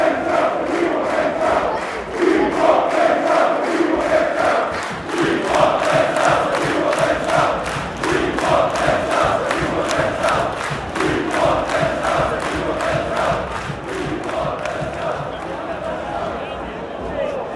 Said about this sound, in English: You can hear the crowd here in the away end.